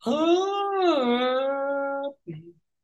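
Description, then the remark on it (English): A long, loud human yawn, voiced and drawn out for about two seconds, its pitch swelling upward then sagging down, ending with a brief sighing grunt after a short pause. “Well, let me have my last yawn.”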